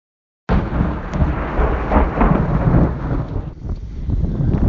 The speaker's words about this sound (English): Just had another massive thunderstorm hit. Luckily, I just stopped at a petrol station to get some food and drink, and it just suddenly started belting down with rain.